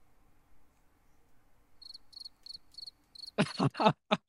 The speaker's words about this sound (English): Wow. The fucking cricket.